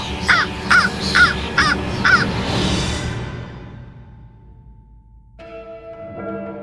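A raven caws five times in a quick, harsh series over a low rumbling background, then fades out before a bell begins to ring.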